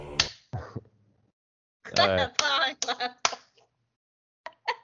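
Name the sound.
finger snap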